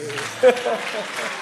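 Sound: audience clapping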